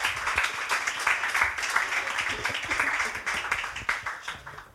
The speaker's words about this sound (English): Yes, a round of applause.